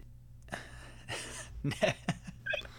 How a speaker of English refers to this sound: I had a cough there.